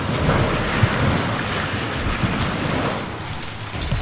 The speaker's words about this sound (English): The wind's picking up. The storm's moving in faster than I expected. Good God, man. Those swells must be 40 feet or better.